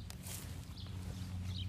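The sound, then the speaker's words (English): Soft hooves tap and shuffle on a hard surface as goats move about, a few faint irregular clatters over a steady low rumble, with no one speaking. “The goats are going crazy today.”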